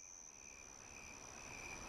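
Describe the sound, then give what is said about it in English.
A Carolina ground cricket's steady, unbroken trill runs high and continuous through the whole moment, with a second fainter tone beneath it and a soft outdoor hush, no voices, on the Bobolink Trail just east of the East Boulder Rec Center as the sun goes down. “That constant trill is a Carolina ground cricket.”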